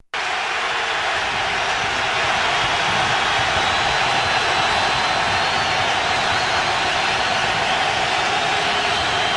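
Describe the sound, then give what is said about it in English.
A steady, dense roar from a large stadium crowd at a football game, just before the first play, loud and unbroken for the whole stretch, with no individual voices standing out and no one speaking over it. “Or maybe this is just natural crowd noise.”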